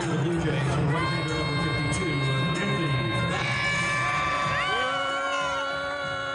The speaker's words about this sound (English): booing Anthony Bass. He's coming out to the pitcher's mound from the bullpen